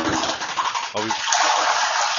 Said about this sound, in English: And there's the flush. That's the well being filled. I flushed.